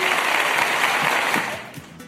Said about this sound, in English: You are correct. Round of applause.